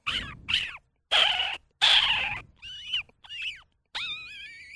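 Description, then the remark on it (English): A person mimics a cat yowling inside a bucket: a series of about seven loud, strained, pitch-bending meows with a hollow, echoing ring, separated by short gaps. “my ability to make the sound of a kitty cat in a bucket.”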